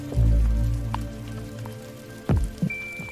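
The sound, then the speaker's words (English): Rain patters steadily over a low, rumbling wash, with a few heavier drips landing and a faint thin tone appearing near the end. No one speaks. “take this very different passage by Thomas Merton on Rain”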